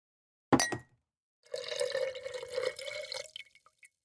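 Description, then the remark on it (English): A sharp glassy clink, then a short pause before water pours from a pitcher in a steady stream for about two seconds, clear, ending in a few drips. “appeared with a pitcher of water and a bowl filled with dates.”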